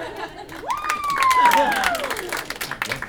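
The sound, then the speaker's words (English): A crowd claps steadily for about three seconds, the applause dense and sustained, while a single high whoop rises sharply and then slowly slides downward over the clapping. “Round of applause.”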